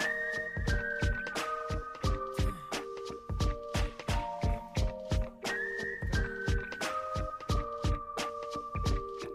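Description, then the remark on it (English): A slow, bluesy tune whistled clearly, sustained notes stepping through a melody over a steady thumping beat. No one speaks. “so I started whistling the blues, man, this was the tune.”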